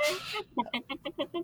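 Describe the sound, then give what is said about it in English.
A chicken clucking sound effect: a quick, steady run of about seven short clucks, fairly loud, right after a brief burst of voice at the start. “Oh, we're all about the sound effects today.”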